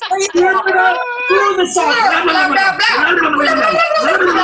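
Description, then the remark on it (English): A voice imitates loud, wet slurping and gargling of seawater, a continuous bubbling vocal noise with wobbling pitch that lasts several seconds, loud. “Slurping up the seawater every day. Just slurping up seawater.”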